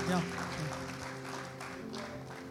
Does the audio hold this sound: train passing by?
no